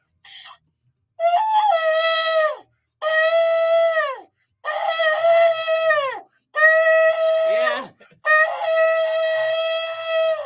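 A shofar sounds five long, brassy blasts, each holding a steady reedy pitch before bending downward at the end, with brief pauses between them and no talking.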